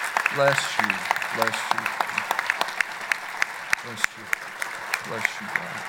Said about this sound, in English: And I just believe we need to, as we honor what the Lord has done in her life, I just think we just need to stand up and give the Lord a clap offering of praise for what He has done and what He has been doing.